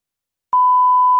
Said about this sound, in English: isn't it crazy that like these beeps just started showing up naturally? Like we don't even do them. They just start happening. Yeah, no, that's what I'm talking about. Yeah. They just happen, you know, whenever you try and say anything.